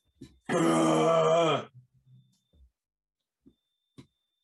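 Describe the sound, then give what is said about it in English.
A single loud, voiced sneeze bursts out abruptly and holds for about a second, its pitch sliding down as it fades. Faint soft clicks and small noises follow in the quiet. “Bless you.”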